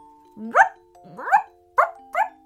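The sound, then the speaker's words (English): A dog named Ruby barks four times in a loose, uneven rhythm, each bark sharp, over a faint steady hum in the background. “Suddenly, Ruby began barking again.”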